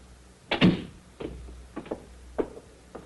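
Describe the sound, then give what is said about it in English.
A door swings shut with a solid thump, followed by a few softer, evenly spaced taps that sound like footsteps moving away. “I'll show you to the door.”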